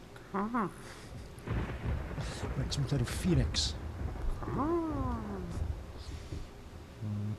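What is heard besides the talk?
thunder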